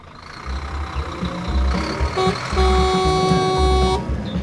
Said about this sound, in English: what are you doing driving a neon green school bus? And are those flaming lightning bolts painted on the side? This little baby's all mine.